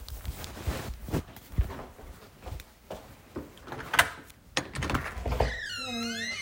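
household object, knocking on a door

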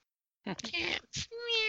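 animal, cat meowing

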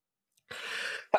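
human body sound, sneeze

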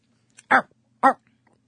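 animal, dog barking or whining

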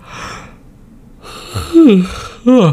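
human body sound, yawn

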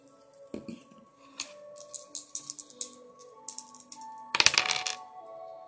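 household object, dice being rolled

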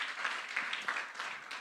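crowd, audience applause

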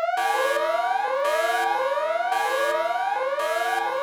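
signal or alarm, siren sound effect

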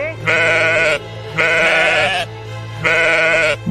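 animal, sheep bleating

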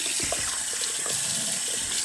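household object, tap water running

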